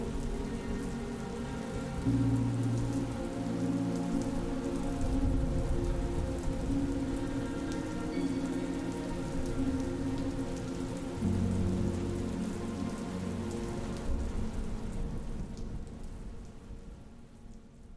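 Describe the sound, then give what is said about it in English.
Heavy rain pours steadily, a dense hiss of drops drumming on surfaces, with low rumbling underneath; it fades slightly near the end, and no one speaks. “The group stood silent, rain falling heavy upon them, mixing with the tears now flowing down their face.”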